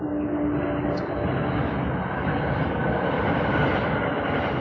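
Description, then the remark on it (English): A train rumbles past, a loud, steady roar of engine and wheels that holds constant throughout, with a low droning hum underneath early on. “Wager Maker train pulling through already. There it is.”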